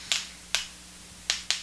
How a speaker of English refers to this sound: I'm clicking two vapes together.